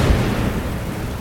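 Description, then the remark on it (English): A loud electric spark between two electrodes inside a sealed flask, simulating lightning in Miller's experiment, crackles like a lightning strike, a sharp burst with a deep booming rumble that holds steady for just over a second. No one speaks. “Or more accurately, a spark between two electrodes inside the sealed flask. The electricity simulated lightning in the Hadean atmosphere.”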